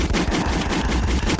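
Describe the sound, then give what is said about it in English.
Rapid, loud bursts of gunshot sound effects fill the moment, a dense rattle of shots like a machine gun firing continuously with no pauses, harsh. “Let's get some gunshots”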